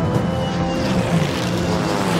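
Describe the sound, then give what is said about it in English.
Deep, droning roar of five British Spitfire propeller fighter planes, a loud, steady engine rumble with throbbing low tones that holds without a break. No voices are heard. “This time, it's a deeper sound, one that Jack can feel in his chest. Spitfires, the British fighter planes.”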